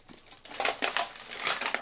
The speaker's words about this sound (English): Oh. You like that? Crunchy. My overflowing garbage can. Full of piss.